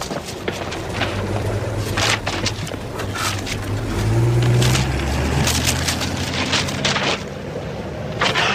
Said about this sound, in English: you're going to hear somebody rifling through some pages. And then you're going to find out why it's a book, but we don't know what book it is quite yet, but it'll become clear in the clip